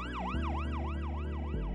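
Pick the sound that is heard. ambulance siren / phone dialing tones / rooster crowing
ambulance siren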